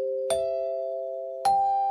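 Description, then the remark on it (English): A two-tone ding-dong chime: two clear, ringing strikes about a second apart, the second slightly higher, each sustaining and slowly fading. No voices. “Love those chimes.”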